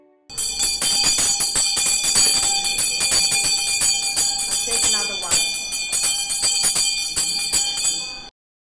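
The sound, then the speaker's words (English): A metal bell, rung by a hiker to mark completing the roughly 1,000 km Bibbulmun Track walk from Albany to Kalamunda in Perth, Australia, rings rapidly and repeatedly for about eight seconds, its bright, sustained clangs overlapping into a continuous loud peal before stopping abruptly. “And that sound you just heard was me ringing the bell, which signifies that I've completed my trip on the Bibbulmun Track.”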